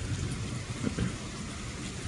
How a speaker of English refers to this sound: nice thunderstorm. It's still raining. You can hear it.